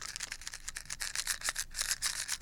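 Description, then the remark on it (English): Pretzels shaken in a box to try to make a sound like rain make a dense, dry rattling that goes on without a break, with a quick, uneven rhythm of crisp, scratchy pieces tumbling against cardboard. No one speaks. “Oh my god, it could sound like rain if you shake the box.”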